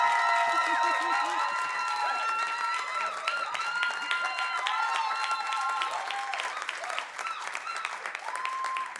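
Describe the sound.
A church audience breaks into sustained applause with cheers as someone is called to come forward, dense steady clapping filling the whole stretch while excited voices whoop and call out above it.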